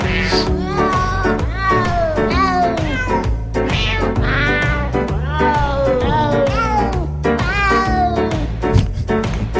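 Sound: cat in heat yowling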